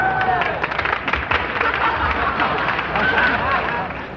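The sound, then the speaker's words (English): An audience applauds a band's performance played on toy instruments, a dense, even wash of clapping mixed with crowd murmur and a few faint whistles, holding at a constant loud level throughout. “Judging by the applause, looks like we'd better throw away our regular instruments and play on toys from now on.”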